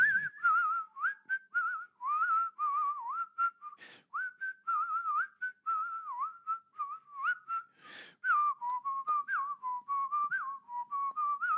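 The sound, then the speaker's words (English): Someone whistles a song, a steady melodic line of clear pure notes with short breaths between phrases and a couple of brief breathy bursts, no talking. “I'm going to whistle this song. I'd rather whistle something cool.”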